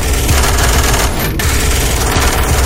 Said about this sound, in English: Inside the Lancaster, the sound of the Browning guns firing would have been deafening.